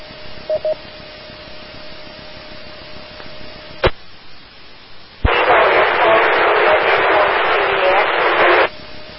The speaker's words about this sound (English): Okay, the next person to call in, I got nothing static out of that one. Try again.